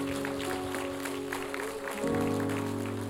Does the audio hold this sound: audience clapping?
yes